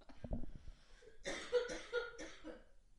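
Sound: wet cough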